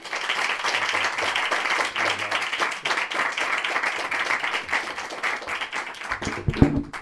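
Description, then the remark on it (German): Steady audience applause welcoming a guest at the start of a talk, a dense wash of many hands clapping at an even loudness for several seconds, with a brief tonal sound and a few louder claps near the end. “Also herzlich willkommen, du kriegst einen schönen Applaus zu Beginn.”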